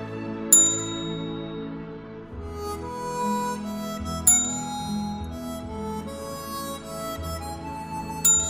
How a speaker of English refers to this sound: Now he's doing a 40 ding salute. I've got a 40 dinger salute.